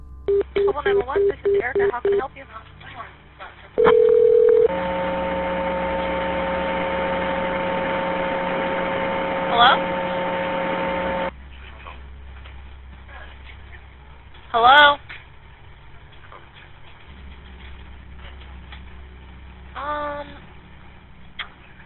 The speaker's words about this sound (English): they discovered the call had come from the Imperial Memorial Gardens, which is a funeral home and a cemetery. The police mainly heard static. Here is the call.